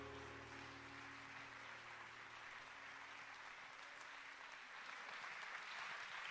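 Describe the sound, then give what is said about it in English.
An audience claps their hands to the Lord during a worship service, a dense, steady wash of applause lasting several seconds, loud and continuous, with a low hum sustained underneath. “that hand clap to the Lord.”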